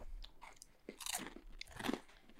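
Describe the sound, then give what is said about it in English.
Crunchy food being chewed right into a microphone, with several sharp, crackly bites and grinding chews in an uneven rhythm, fairly quiet overall with no talking. “You know, a show where people eat on mic.”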